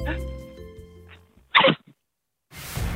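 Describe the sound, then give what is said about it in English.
A person mimics a 25-year-old bride stifling a sneeze at the altar mid-wedding ceremony: a strained, hummed build-up, then one short, sharp, muffled burst and a tiny catch, followed by a pause and a wash of broad noise. “She feels a sneeze coming on. What does she sound like?”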